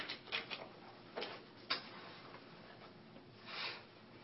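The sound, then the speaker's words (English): A pen scratches across paper in a few short strokes, with a longer sweeping stroke near the end as a big circle is drawn. No one speaks. “So draw on your paper a big circle.”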